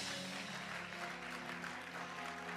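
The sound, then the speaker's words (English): An audience claps steadily for a couple of seconds after hearing of a medical screening visit that left six months of medication, a dense, continuous patter of many hands at fairly even loudness, with a faint low hum beneath it. “I thought you'd be clapping.”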